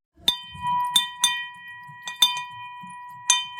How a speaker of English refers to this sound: At Hudson Kitchen, we have our money bell in the lobby, which you know that we ring when people are celebrating something.